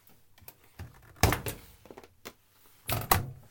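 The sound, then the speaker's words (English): A newly fixed washing machine door is opened and shut, giving a couple of solid clunks and latch clicks with softer handling rattles in between, and no one speaking. “So the novelty of being able to open and shut the washing machine door in the way that everybody else too still hasn't worn off, even though it's a number of days since I changed it.”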